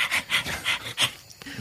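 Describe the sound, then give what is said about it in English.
A person pants in quick, breathy bursts, about five in a steady rhythm, imitating an overheated bird that opens its wings a bit and pants. It is fairly loud, with no talking. “Do you do what birds tend to do when they kind of open up their wings a bit and start panting?”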